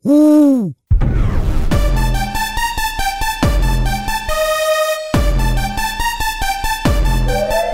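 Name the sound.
owl hooting sound effect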